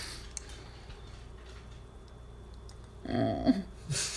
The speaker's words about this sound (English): Let me just take one sip of wine.